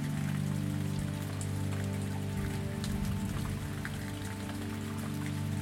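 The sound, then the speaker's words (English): Steady rain patters continuously over a low, sustained humming drone, with scattered soft drop-like ticks throughout and no voices. “Follow the raindrop as it falls, landing in a green garden.”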